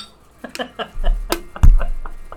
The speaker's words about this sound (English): Dude, that's like a Pavlovian response right now. Like every time you click the bottles, like we're going to make a good point for the rest of the episode.